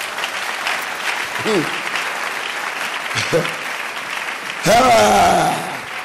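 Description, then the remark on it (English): A church audience claps for Jesus in a steady, dense wash of applause lasting several seconds, with a few raised voices calling out over it and a louder cheer swelling near the end. “What are those who clap for Jesus in church?”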